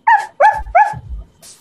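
A dog barks three times in quick succession, loud, each bark sharp with a harmonic yelp quality, followed by a brief soft noise at the end.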